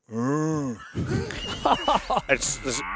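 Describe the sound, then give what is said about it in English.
A voice imitates a cow with one long, loud, drawn-out moo rising and falling in pitch, followed by lively overlapping chatter and brief laughter. “I want a cow noise instead.”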